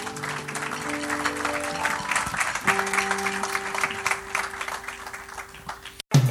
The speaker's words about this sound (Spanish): Un aplauso al Señor.